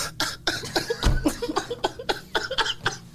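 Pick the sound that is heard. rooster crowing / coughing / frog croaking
coughing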